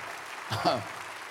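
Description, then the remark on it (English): A church audience applauds steadily to cheer on a man honored for 45 years of faithful ministry, a dense even patter of clapping, while a single voice briefly calls out over it midway through. “Let them cheer you on.”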